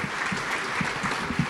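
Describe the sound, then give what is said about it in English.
A crowd claps steadily for the panelists at the close of a panel discussion, a dense, sustained wash of many hands with no voices standing out, loud and even throughout. “Please, another round of applause for our amazing panelists.”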